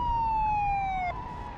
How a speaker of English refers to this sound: And suddenly, in the rearview mirror, I discovered a police car coming up behind me with a loud siren and lights flashing madly.